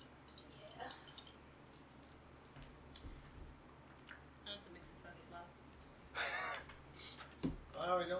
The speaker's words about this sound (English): And you know what, I'll roll something on my side as well. everyone rolling the dice.